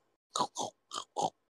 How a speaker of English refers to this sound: We started recording. We hear they wouldn't like come out. Like, I mean, they did. But it was weird because they were making pig noises.